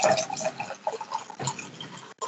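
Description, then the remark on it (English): Echo Falls Fruity Strawberry rosé wine (5.5% alcohol) glugs and splashes steadily from a bottle into a glass, a bubbly, gurgling pour with small uneven bursts, continuing for a couple of seconds before a brief pause and a last splash. “So, let's pour.”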